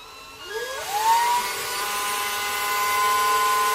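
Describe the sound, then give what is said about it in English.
A power drill spinning a Q-tip, held by a man pointing it towards his ear, spins up, its motor whine rising quickly in pitch and then holding a steady, continuous buzz for a few seconds, with no voices. “He shouldn't be holding a drill, let alone pointing it towards his ear.”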